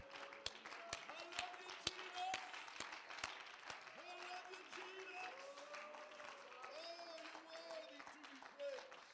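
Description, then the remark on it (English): A church audience claps steadily in praise throughout, a dense patter of many hands with a few sharp individual claps standing out, while voices call out and murmur underneath. “Can we give him a hand clap of praise tonight?”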